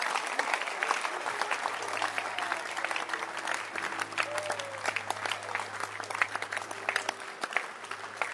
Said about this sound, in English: I said, clap your hands. Did you hear me?